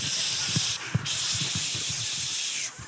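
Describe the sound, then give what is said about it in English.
A long, forceful hiss of bear spray discharging continuously for about three seconds, loud, with a brief dip in the middle and a few low thumps underneath. “If a bear comes sneak up on you, how many of you just grabbing that spray?”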